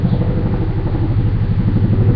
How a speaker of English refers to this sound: The sound of the helicopter passing overhead is wholeness.